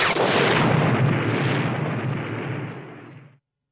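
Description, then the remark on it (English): A loud explosion erupts at once with a broad roaring blast, then rumbles and fades over about three seconds before cutting off. No voices are present. “Yep, so you got a little warning beeps and then an explosion.”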